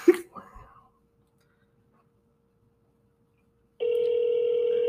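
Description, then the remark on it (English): A brief rustle and soft breathy noise, then near-silence. An outgoing phone call to a grandmother's home line then starts ringing, and its steady electronic ringback tone holds, clear and even, to the end. “It's ringing.”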